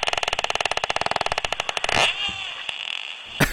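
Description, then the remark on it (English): A real porpoise vocalization: a rapid, steady train of buzzy clicks for about two seconds, then a fainter wavering tonal squeal and a single sharp click near the end. “Peter, find us some audio from a real porpoise, please.”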